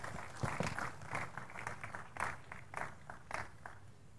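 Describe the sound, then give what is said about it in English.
A church audience claps together after a prayer in a steady wash of applause, many hands overlapping into a dense, fairly loud patter with sharper individual claps popping out, no voices over it. “Please take your seat, give the Lord a big clap.”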